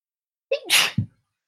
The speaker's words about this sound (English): That was a long sneeze windup. Hope it was satisfying. Yeah, it was.